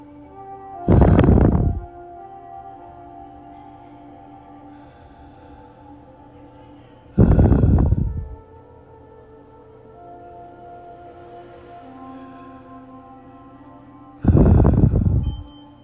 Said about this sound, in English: So we're going to do breathing exercise 3 times. Still remain in that yoga pose.